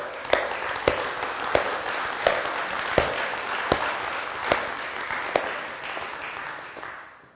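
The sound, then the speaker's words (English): A crowd applauds the people who have led Alpha and other groups, clapping steadily for several seconds, a dense wash of clapping punctuated by a few sharper, evenly spaced claps, before tapering off at the end. No one speaks. “In fact, why don't we applaud them now?”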